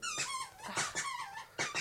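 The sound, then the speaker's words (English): A dog's rubber squeaky toy squeaks repeatedly in quick, uneven bursts, loud, with high whistling tones and a soft faint background underneath. “And she wants the squeak. Yeah, let her have the squeak.”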